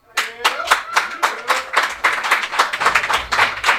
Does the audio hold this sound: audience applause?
yes